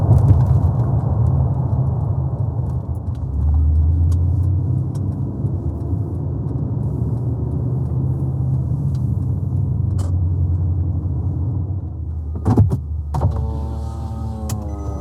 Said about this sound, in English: Hear the wheels of the vehicle hitting different like pavement structures, and I'm pretty sure it's the BQE where it goes like da-dunk, da-dunk, da-dunk, da-dunk, da-dunk, da-dunk.